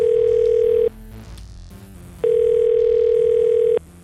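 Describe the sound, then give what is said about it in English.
Two long, steady electronic fax machine tones, each lasting over a second, with a short pause between them. Loud, with faint background noise during the gap. “Why would you build a fax machine in this day and age instead of a phone?”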